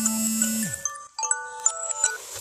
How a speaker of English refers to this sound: Sorry, an alarm go off at 1:30.